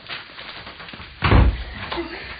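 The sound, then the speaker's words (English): A door is shut with one heavy, low thud, followed by a few faint, softer clicks and rattles as it is locked. “Lock the door.”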